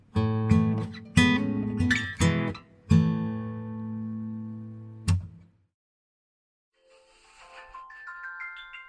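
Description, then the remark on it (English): A phone medication reminder alarm, set for 10 o'clock every night, rings with a bright, repeating electronic melody of chiming tones, fairly loud, cutting off after about five seconds, then a faint, higher warbling tone rises briefly. “That is my medication alarm.”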